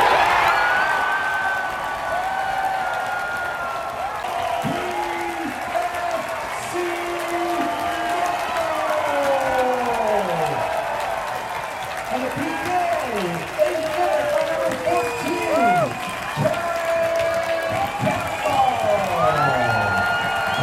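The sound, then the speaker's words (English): A stadium crowd roars and cheers after Pacific FC score from an 8th-minute penalty kick against the Vancouver Whitecaps in a Canadian Championship preliminary round match. It is a dense wash of many voices shouting and whooping with rising and falling calls, staying loud and steady for about twenty seconds. “Even with Marco Bustos, Lucas Cavallini, and both Baldissimo brothers out, Pacific FC were able to fire up the crowd from a penalty kick in the 8th minute.”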